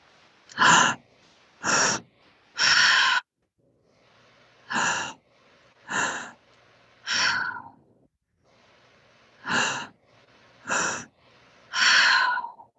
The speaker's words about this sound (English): So just keep going with that breathing. In the beginning here, it can feel a little uncomfortable, a little strange sometimes.